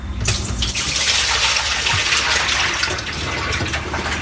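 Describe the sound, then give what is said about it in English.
Turkey brine is dumped from a covered bowl into a sink, pouring steadily for several seconds, a loud, continuous splashing gush with no talking over it. “It's the brine that you're going to hear dumping into the sink.”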